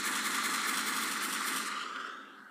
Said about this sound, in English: Gunshots for that man.